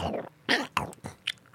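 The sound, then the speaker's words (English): Wet chewing with a handful of crunchy bites spaced irregularly over a second and a half, heard alone with no talking. “Just chew that cud.”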